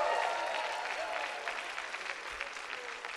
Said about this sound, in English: But be of good cheer. Somebody give the Lord a cheer. Come on, be of good cheer.